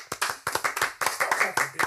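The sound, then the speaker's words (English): Several sharp hand claps in an uneven, quick rhythm, fairly loud, with a few faint voices mixed in underneath. “Clapping for you. Don't clap for yourself.”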